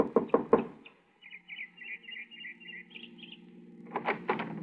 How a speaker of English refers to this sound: I got her home address and knocked at the door of her small house 15 minutes after she arrived home that evening.